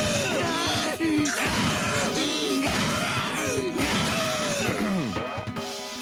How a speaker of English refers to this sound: That heifer scream will always be satisfying to me, because it's just got such vitriol behind it.